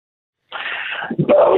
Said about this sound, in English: Hold on, I'm listening to you, but I need to make this dog be quiet.